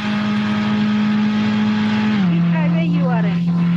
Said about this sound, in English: Redlining his car. Say what? He's driving.